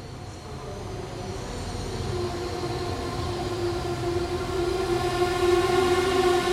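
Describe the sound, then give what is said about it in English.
The 6:45 train from Krakow rolls into a station, its steady rumble slowly growing louder, with sustained metallic whining tones, likely brake squeal, ringing over the low roar as it nears platform 3. “Train approaching now on platform 3, please stay behind the yellow line.”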